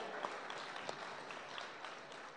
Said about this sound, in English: How about a round of applause for Beckett?